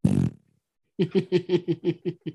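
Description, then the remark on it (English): ASMR slime put over a microphone squelches into fart-like noises: one wet burst, a short pause, then a quick, rhythmic run of about eight squishy pops, fairly loud with no talking. “They got slime, some kind of ASMR farty slime, or I don't know. They put it over the mic.”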